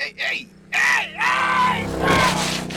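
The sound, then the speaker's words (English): A man screams in terror as he dives for cover from a car speeding down the road toward him: a short strangled cry, a brief pause, then a long, wavering, panicked, loud scream that rises and falls in pitch without any words. “screamed like a terrified child and dove for cover.”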